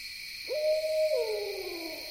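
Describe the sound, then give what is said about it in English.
A barred owl gives a single rising, drawn-out hoot that slides downward at the end, close and clear, as it gets dark near a campground, over a steady, shimmering chorus of insects buzzing continuously in the background. “A barred owl sounds off nearby, against a vibrant chorus of insect song.”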